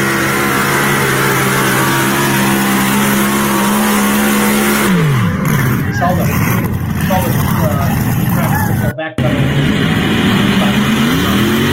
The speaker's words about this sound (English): That's usually a good sign of a good run. So there's a Griffin Growl. So beautiful, beautiful tractor.